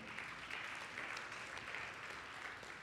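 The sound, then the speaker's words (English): An audience applauds steadily for about three seconds, a dense, even wash of many hands clapping at once with no voices and no pause. “Come on, you can clap, that's amazing.”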